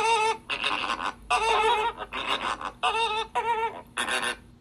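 Flamingo calls: a run of about six harsh, nasal honks in quick succession, each a raspy, buzzing burst rich in overtones, loud and steady with brief gaps between them and no voices.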